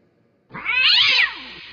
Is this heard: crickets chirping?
no